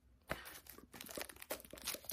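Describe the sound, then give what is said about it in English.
Crisp tearing and crinkling of packaging, with sharp rips and crunchy rustles in quick irregular bursts as the box of a phone case is torn open; no one speaks. “So let's go ahead and open it and see what's inside.”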